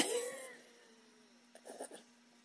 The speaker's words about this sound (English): I got a hiccup.